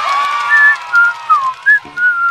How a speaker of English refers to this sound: Sometimes, when I'm happy, I like to whistle. 我开心的时候喜欢吹口哨。